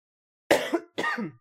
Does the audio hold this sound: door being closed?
no